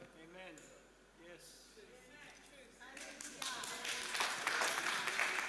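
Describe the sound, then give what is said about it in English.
A voice speaks over a murmuring crowd, then clapping from the women in the audience breaks out and swells into a loud, dense patter of applause that keeps building to the end. “How is it that only the ladies clap then?”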